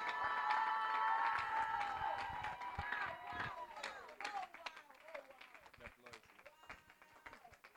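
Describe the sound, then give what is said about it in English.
A crowd applauds and cheers loudly to welcome the head of careers at Ashesi, with dense clapping and excited voices at first, then the noise gradually thins out into scattered claps and a few shouts. “Oh, I don't like your reception crowd.”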